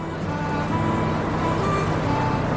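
A 1959 Leyland double-decker bus with an open platform at the back drones steadily, a dense rumbling hum with faint whining tones riding on top, constant for a few seconds; it is being taken from Manchester through England and Wales to Anglesey for a wedding.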